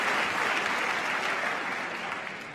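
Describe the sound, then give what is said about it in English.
A crowd claps and cheers steadily, a dense wash of applause that holds loud throughout and tapers slightly toward the end, with no clear speech over it. “Keep it cheering.”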